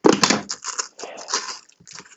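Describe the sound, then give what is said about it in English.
Scissors slice through the heavy packing tape on a shipped package in a few rough, crackling bursts with short pauses between, a dry ripping texture that starts loud and eases off toward the end. “Yeah, we're gonna have to use scissors because he used a lot of tape, which is okay.”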